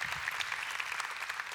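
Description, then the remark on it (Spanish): A church audience at Sugar Creek claps steadily, a dense, even wash of many hands applauding at moderate volume with no voices standing out, celebrating what God has done over the past year. “Eso merece un aplauso, porque hay mucho que celebrar de lo que Dios ha hecho.”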